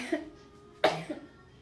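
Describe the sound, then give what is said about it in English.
A woman lets out a single sharp sneeze, one of several in a row, preceded by a faint intake of breath and followed by a small breathy catch, with quiet room tone on either side. “I ain't sneezed that many times in a long time.”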